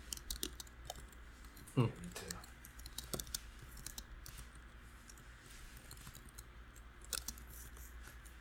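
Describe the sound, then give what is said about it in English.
Someone types a message on a computer keyboard, a steady, irregular patter of small key clicks with a louder knock early on, over a low background hum. “How much are you typing over there?”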